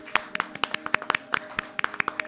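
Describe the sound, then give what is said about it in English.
A brief round of clapping from a small group, sharp hand claps landing at an uneven pace for a couple of seconds, fairly quiet and with no talking over it. “Let's have a round of applause for the king of threading the stone needle”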